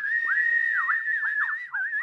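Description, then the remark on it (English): A loud, sustained human whistle of audience appreciation holding a steady high pitch, broken by quick downward swoops and warbles, alone with no talking. “You may whistle.”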